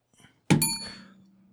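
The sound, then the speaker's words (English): A single sharp gavel bang strikes once, loud and sudden, followed by a bright ringing tail that fades over about a second. A faint brief sound comes just before; no one speaks. “So, yeah, we can bang the gavel on that.”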